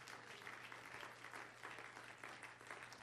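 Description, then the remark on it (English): A church audience clapping their hands in praise to the Lord, a steady, dense wash of hand claps that holds evenly for a few seconds with a faint low hum underneath. “If you believe that, would you clap your hands to the Lord and give Him praise?”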